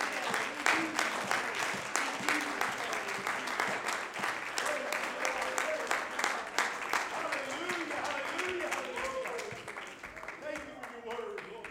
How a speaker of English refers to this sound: In Jesus' name, why don't you clap your hands unto the Lord?